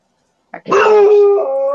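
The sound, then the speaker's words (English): A dog gives a short yip followed by one long, drawn-out bark that rises into a whining howl, loud, with no one talking. “I apologize. I have a dog.”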